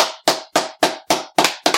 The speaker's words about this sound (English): I'm sure everybody's clapping as well.